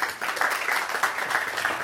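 Steady applause from a crowd, a dense, even patter of many hands clapping at once that holds at a fairly constant loudness throughout, with no voices standing out.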